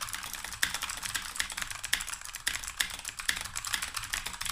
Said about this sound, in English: So the Razer Huntsman is a classic mechanical keyboard. And this has been my daily driver over the past few weeks. I find I can type about 157 words per minute on this very fast keyboard and very ergonomically good.